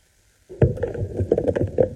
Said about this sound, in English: Wow, are you okay? Can you hear my dog sneezing?